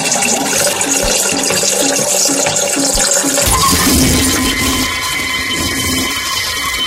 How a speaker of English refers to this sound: Terrifying. Hideous. Alarming. Harrowing. They're just some of the words Australian yelpers are using to describe what's been dubbed the loudest toilet flush in the country.